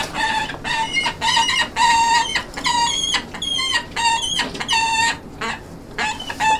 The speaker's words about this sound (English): That is Equinox, a peregrine falcon, the fastest animal on the planet